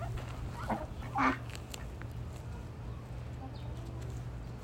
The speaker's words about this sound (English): Hello. Hello, chicken. Do the chickens peck? Oh. Hello. Oh.